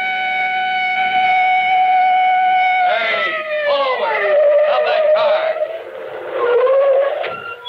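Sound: police car siren approaching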